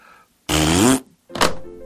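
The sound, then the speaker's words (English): A loud Bronx cheer, a raspberry blown with the lips, demonstrated as something to give a suspicious phone caller before hanging up: a half-second buzzing, sputtering blast that rises slightly in pitch, followed after a short pause by a briefer, fading second burst. “If you want, you can give them a Bronx cheer first, like this.”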